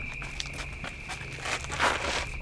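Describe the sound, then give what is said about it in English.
Soft, irregular footsteps of an approaching animal crunch through leaf litter, a few scattered steps followed by a louder shuffling cluster, over a steady high insect-like drone and low background rumble. “It looks like footsteps to me.”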